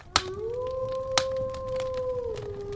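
A lone wolf howls in one long, steady note that rises, holds and slowly falls away, with a couple of sharp cracks or snaps punctuating it.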